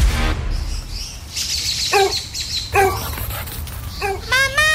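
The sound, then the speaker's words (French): A dog that has got out of the yard lets out three separate barks, about a second apart, over a steady outdoor hum while birds chirp and tweet in the background. “Le chien est encore sorti de la cour!”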